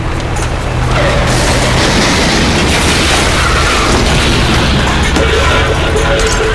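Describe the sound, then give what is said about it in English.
A loud, sustained crash of smashing metal and impacts, a dense roaring burst that rumbles on for several seconds as a car drives through a wall of cars. “I'm going through the wall of cars.”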